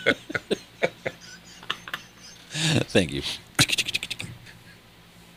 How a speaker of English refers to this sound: I love your sound effects. Are you chopping lettuce? Chopping lettuce.